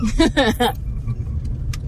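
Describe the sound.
Steady low rumble of road noise inside a moving car in the Pacific Northwest, constant throughout, with a brief burst of someone speaking at the start and a faint small clink near the end.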